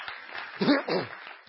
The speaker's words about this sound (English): It's quite a story, isn't it? Now you can applaud.